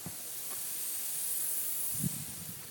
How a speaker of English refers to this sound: Hear the sprinklers going in the front bush. Listen to that.